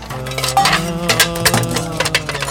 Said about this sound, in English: Builders on the roof with a hammer, don't know where they came from.